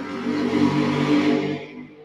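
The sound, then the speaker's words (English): A motorbike engine screams in a single sustained rev, loud, its high whine holding steady for under two seconds before quickly fading away. No voices. “Well, you don't do it by screaming like a motorbike, that's for sure.”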